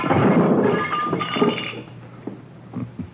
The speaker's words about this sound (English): Okay, Thurston. So you smashed the lamp.